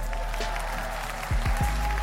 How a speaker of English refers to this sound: They deserve an applause for this one.